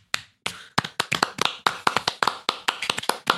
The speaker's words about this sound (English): Clapter is like clapping laughter where it's boisterous and happy. Clapping. Clap if you got it.